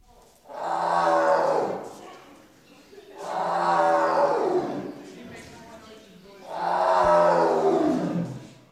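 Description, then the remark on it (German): A tiger at the Berlin Zoologischer Garten roars three times, each a long, throaty call that sweeps downward in pitch, spaced a few seconds apart, loud with no talking. “Well, it took me to the tiger at Berlin Zoologischer Garten.”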